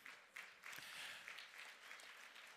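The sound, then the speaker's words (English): A church audience applauds steadily in thanks to the ushers, greeters and security, many hands clapping together in a dense, continuous wash of sound without any voices standing out. “I don't have time for all your clapping.”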